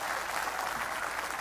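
An audience claps together as a clap offering to the Lord, in a dense, steady wash of applause that holds at an even, fairly loud level throughout, with no voices standing out.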